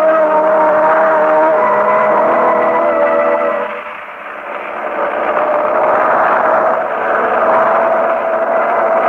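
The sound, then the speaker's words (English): An oil truck filled with gasoline drives along on a night delivery to a gasoline station, its engine a steady, loud droning rumble with tonal hum that dips briefly midway, as if shifting gears, then resumes. No voices are heard. “I've ridden in things more comfortable than this gasoline truck, Mr.”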